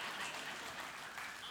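A steady burst of audience applause, dense overlapping claps forming a continuous bright wash at an even loudness throughout, with no one speaking over it.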